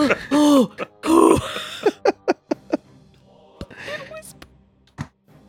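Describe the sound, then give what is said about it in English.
A voice makes breathy, whispery vocal sounds imitating a whisper in someone's ear, likened to a Biden whisper, followed by a series of short, quick sniffs imitating someone sniffing him, then a faint breath near the end. “Oh god, like is he sniffing him a little too?”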